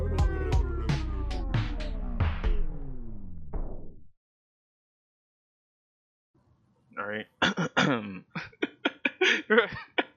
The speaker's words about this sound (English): I like how exaggerated you like clear your throat.